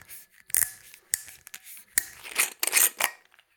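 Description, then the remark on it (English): A screw cap twists off a whiskey bottle: a string of sharp clicks and ratcheting crackles, then a louder, scratchy grinding burst as the seal gives way, with no talking. “Go for the screw cap.”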